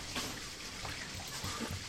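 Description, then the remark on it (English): Faint, steady rush of water running through pipes, a continuous muffled hiss with slight gurgling swells, with no one talking. “Bath time must be done. That or she really had to pee.”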